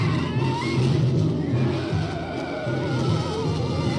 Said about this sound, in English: Yeah, so that is the spider screeching. That's what that's the sound that the spider makes every time it's on screen. That's horrible.